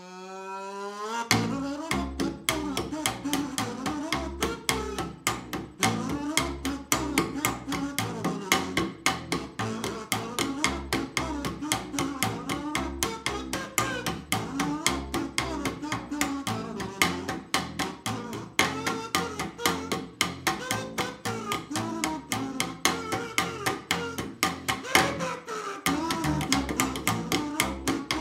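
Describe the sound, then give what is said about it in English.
The bouncy, steady-beat Inspector Gadget theme tune, loud throughout, with a bright, nasal kazoo-style buzz from a membrane vibrating as someone hums into a tube, carrying the melody over bass and percussion; no one speaks, and it briefly drops out near the end. “When a person hums or otherwise vocalizes into the wider end of the tube, the membrane vibrates, and you get that buzz sound.”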